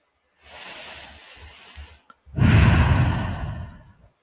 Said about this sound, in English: Ten seconds of just breathing and only thinking of those numbers.